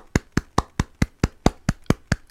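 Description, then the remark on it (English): About ten sharp, even hand claps in a steady, quick rhythm, each a crisp slap of roughly equal loudness, with no voices in between; applause for Timothy Ray, the first patient cured of HIV. “Clap for Timothy Ray.”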